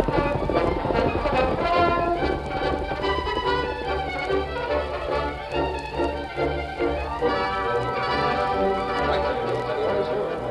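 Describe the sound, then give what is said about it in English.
Galloping horse hoofbeats, as the masked man and Tonto ride their horses including Scout, drum in a steady, rapid rhythm beneath loud, sweeping orchestral music that fills the whole stretch without a break; no one speaks. “Dan Reed, Porter, the captain, the troopers, and the Aurora watched the oncoming horses.”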